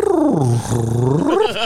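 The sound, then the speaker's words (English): A person does a loud, drawn-out imitation of a cat's meow, one long wavering call whose pitch dips low in the middle, then rises and warbles, with no other sounds around it. “Meow. Shit like that.”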